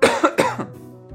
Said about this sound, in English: You know how I cough before the countdown's done? That's a professional. Well, I heard it. You didn't turn away from the microphone. I can't turn away from the microphone.